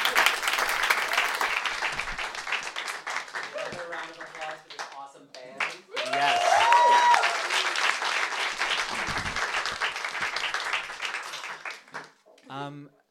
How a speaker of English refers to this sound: Can we give a round of applause for our playwright for that amazing play?